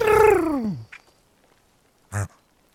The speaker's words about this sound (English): Wow. This is a dusky grouse. Do it again. Come on. That's like a pig. Am I wrong? It's like a pig noise.